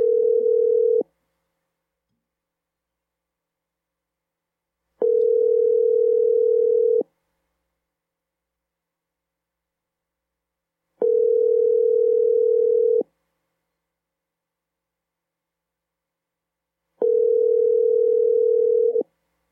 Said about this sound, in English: I am going to cold call my mortal enemy from the Wrestle Nerds